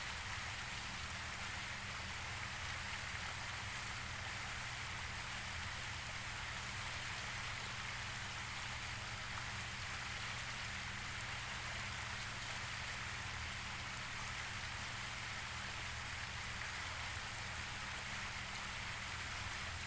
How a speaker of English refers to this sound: Continue to breathe deeply in through your nose and out through your mouth, focusing on the sound of the water.